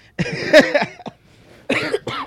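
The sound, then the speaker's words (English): A person coughs in two quick clusters: a long harsh hack followed by a short one, a brief pause, then two more rough coughs. Loud and raspy, with no talking. “This nigga's coughing.”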